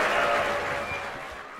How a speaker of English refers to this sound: I have some very good hip-hop news. BET Uncut is coming back for a week, ladies and gentlemen. Can we please get a round of applause for that?